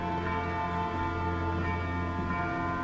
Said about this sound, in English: It's out there in the landscape, in the city that surrounds him. There's a lot of bells ringing in the distance.